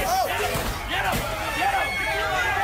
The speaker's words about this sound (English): And this is them attacking the side of a bus. Is this, I saw something, this was a Proud Boys bus, I believe.